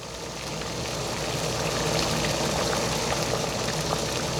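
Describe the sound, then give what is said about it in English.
A steady, continuous bubbling of hot pot broth with lamb, vegetables, tofu and noodles at a rolling boil, moderately loud, with dense crackling and small pops spread evenly throughout and no voices. “I love the boiling sound of the hot pot.”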